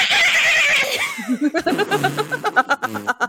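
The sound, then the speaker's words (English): A person imitates the bleat of a sea goat, a goat underwater, starting with a long, strained nasal cry that breaks into a rapid, wavering series of short bleating pulses, loud. “I want you guys to make what you think the sound of a sea goat would sound like.”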